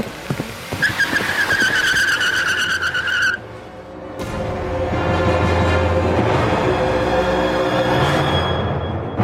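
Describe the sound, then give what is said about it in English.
A car's tires squeal sharply against the pavement, then a loud engine roars and revs as the car speeds off from outside a building, the noise sustained throughout. “They run outside the building, get in a car, and drive.”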